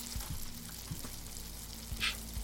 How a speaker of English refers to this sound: Back in the kitchen, a stew was bubbling away nicely.